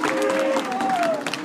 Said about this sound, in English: Let's give you guys one more round of applause here at Fresno State with the Bulldogs.